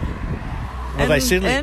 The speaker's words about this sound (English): Oh, that was a truck went past.